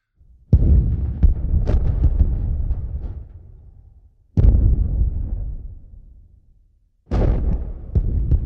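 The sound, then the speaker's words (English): Three heavy booms, the mysterious Seneca guns of the Carolina coast, arrive several seconds apart, each trailing off in a long rolling rumble. No voices are heard. “It's what they call it's a phantom sounds that sound like guns.”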